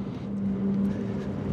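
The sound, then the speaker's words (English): A car engine hums steadily while driving around a corner, a low droning tone with a constant rumble and no voices over it. “We pull over around the corner and Warren cuts the engine for a few minutes.”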